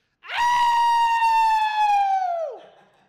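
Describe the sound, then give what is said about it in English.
A person imitates a coyote howl: one long, loud, high-pitched wail that swoops up, holds steady for about two seconds, then drops off sharply at the end. “So how does your howl sound?”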